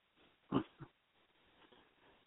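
A loud, rough snore with a snorting, pig-like rasp, followed quickly by a shorter second snort, then faint breathy noise. No one speaks.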